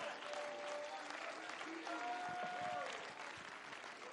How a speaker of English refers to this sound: Hallelujah. Praise God. Come on, clap your hands and let's give some praise.